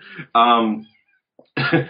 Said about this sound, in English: My cat is just screaming at the door, so if I let him, he'll calm down.